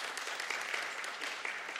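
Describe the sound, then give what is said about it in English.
A crowd spontaneously applauds for the Welsh country, many hands clapping in a dense, continuous patter with no voices over it. “Just a note for those listening online, there was a spontaneous applause for the Welsh country just that few moments ago.”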